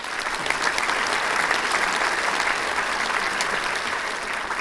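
crowd, audience applause sound effect

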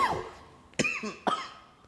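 human body sound, coughing

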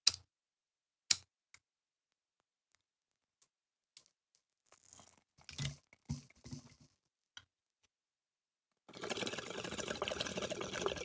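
household object, bong hit

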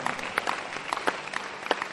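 crowd, audience clapping hands

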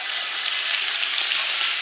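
crowd, audience clapping

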